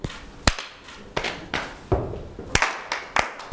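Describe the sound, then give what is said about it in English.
A rhythmic body-percussion pattern of sharp hand claps, taps, slaps and heavier foot stamps in the sequence clap, tap, tap, clap, slap, slap, stamp, clap, clap, about nine crisp hits in an uneven groove, with no talking. “Clap, tap, tap, clap, slap, slap, stamp, clap, clap.”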